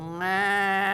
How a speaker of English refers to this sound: I hear the cattle, I hear the sheep, I hear the lambs. What's this?